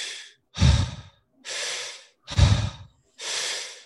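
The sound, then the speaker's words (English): Quick, forceful breaths taken in and pushed out through the mouth, alternating in a steady rhythm, fairly loud, with no talking; a breathing exercise of 20 inhales and exhales through the mouth. “But what we're going to do is we're going to do 20 inhale and exhales through the mouth, and it'll look and feel just like this.”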